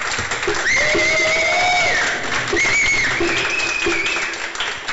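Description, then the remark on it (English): An audience applauds steadily for several seconds for everyone who took part, a dense wash of clapping with a few high, sliding whistles or cheers rising above it. “So, other than that, round of applause, everybody, for taking part.”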